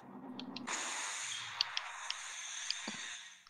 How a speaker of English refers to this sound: This is the, yeah, so it's a M61 Vulcan. It fires 20 millimeter six barrel cannon at 6,000 rounds per minute.